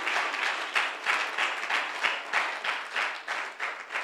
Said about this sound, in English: Somebody was trying to clap for Jesus. It was a good attempt.